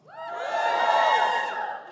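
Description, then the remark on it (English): A stand-up comedy audience cheers and whoops together when the performer asks for a cheer from anyone who is working class. The noise swells quickly and holds loud for about two seconds before easing off, with high excited voices mixed into the roar. “Give me a cheer if you're working class.”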